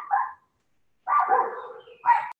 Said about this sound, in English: All right. Sorry about the doggy interruption. Yes. Part of living out in the woods and working from home.